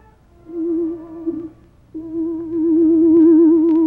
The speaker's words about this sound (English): Presently, from far away, there came the faint sound of a horn.